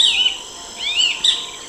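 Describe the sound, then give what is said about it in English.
Wild birds chirp outdoors in the car park of Ray Marshall Park, a few bright, sweeping high-pitched calls coming one after another, with no voices and only faint background ambience. “Real birds, listeners, real birds from the Amazon, these are.”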